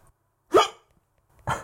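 Two sharp, involuntary hiccups about a second apart, brought on by eating chili in a Thai salad with grapefruit and cashews, each a sudden voiced gulp with a breathy edge, loud, with quiet between them and no talking.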